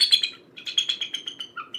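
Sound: bald eagle call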